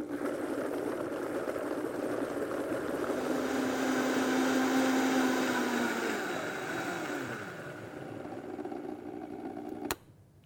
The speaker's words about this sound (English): And we're going to blend that up and just get it nice and creamy before we add the other things. So here we go. Let me put the lid on here. It's going to make a little bit of noise. Hold on.